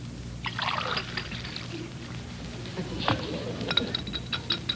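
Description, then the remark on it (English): Water is poured into a glass, a light splashing trickle with a few clinks, fairly quiet, followed by faint tinkling near the end. “could I have a glass of water?”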